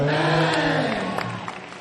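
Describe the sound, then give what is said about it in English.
A church audience cheers and shouts amen together while scattered hand claps break through, growing more distinct toward the end, a loud, dense wash of voices and applause. “If you are clapping your hands, clap it like a believer.”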